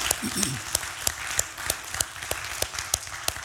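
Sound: audience applause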